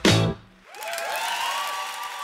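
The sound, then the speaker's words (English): A brief burst of music cuts off, then an audience breaks into steady, dense applause that holds for a couple of seconds, with a few rising whistles over the clapping. “Why are they clapping?”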